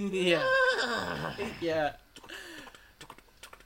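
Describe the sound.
A voice imitates a horse's neigh, a loud, quavering whinny with wobbling pitch lasting about two seconds, followed by a fainter trailing vocal sound and scattered light clicks.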